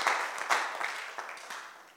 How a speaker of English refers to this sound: Clap your hands for Jesus as you take your seats.